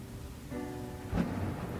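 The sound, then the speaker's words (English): A distant thunderstorm rumbles low and steady beneath a soft wash of rain, with a brief swell of far-off thunder late in the short stretch. No one speaks. “The storm has calmed down.”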